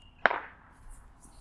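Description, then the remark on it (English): A single sharp firework bang goes off on a hill, cracking out and fading quickly in a brief ringing tail, followed by near silence with only faint background hiss. “Fireworks. On that hill.”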